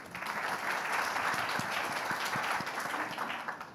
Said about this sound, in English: maybe you could give a round of applause.